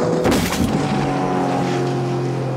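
A speedboat engine drones loudly and steadily as the boat speeds across water, with a brief burst of splashing spray near the start and no voices.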